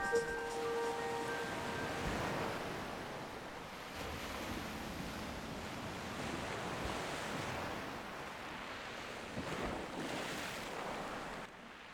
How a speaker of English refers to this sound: I'm living in the moment, sea in my veins, till all that remains are the sounds of the waves. The sound that saves my sanity.